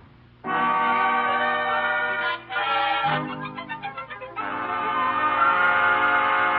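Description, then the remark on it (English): A loud train horn blares steadily for several seconds, with a brief rhythmic chugging of the moving train in the middle before the horn swells again. No one speaks. “He's on his way to the railroad station to get the 6 o'clock train for Albany.”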